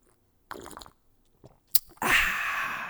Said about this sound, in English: First off, let's just do a little cheers, all right? I'm going to take a little sip.